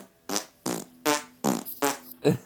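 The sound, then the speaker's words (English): A quick rhythmic run of six short, buzzy fart sounds timed to a woman's movements, evenly spaced and fairly loud, with no talking around them. “Fart to her movements. In case you're wondering what that was.”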